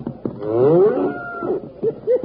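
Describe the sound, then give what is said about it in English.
A little white-faced calf bawls in a long, rising, strained moo, followed by two short, clipped calls, as it runs with a cutting horse after it. The calls are fairly loud, with no voices. “Look at that little white-faced calf go.”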